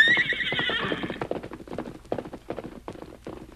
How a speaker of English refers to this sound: For some time, the masked man stood watching his famous horse race down the hill.